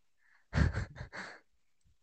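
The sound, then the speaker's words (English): Heavy breathing picked up by the microphone: one loud, rushing breath broken into a few quick pulses, preceded by a faint hiss and followed by near silence. No one speaks. “Put it somewhere where I can't hear my breathing, but everywhere I put it, it's like.”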